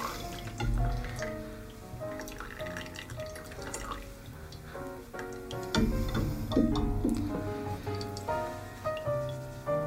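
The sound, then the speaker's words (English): Steady drips of coffee fall through a filter into a pot, fairly loud, with ringing, pitched plinks that overlap in an uneven rhythm throughout. “I will say the drip does take time.”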